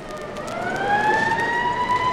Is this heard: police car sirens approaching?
yes